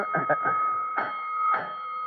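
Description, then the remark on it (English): A fire station alarm rings as a steady, unbroken high-pitched tone for the whole clip, with short bursts of voices breaking in over it. “Alarm, Chief.”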